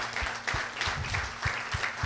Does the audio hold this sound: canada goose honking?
no